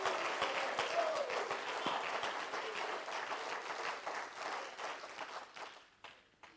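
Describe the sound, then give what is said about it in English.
An audience at a church revival service claps together to the word of God, a dense wash of many hands with sharp individual claps standing out, sustained and fairly loud before thinning and fading in the last second. “I wish some of you men would stand up and clap your hands to him.”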